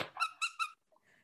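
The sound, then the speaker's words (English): A voice imitates a meerkat's squeak: three quick, high-pitched squeaks in a rapid burst, clear, followed by a couple of faint, short traces before it fades out. “I don't want to take away from your Meerkat, but he did used to squeak.”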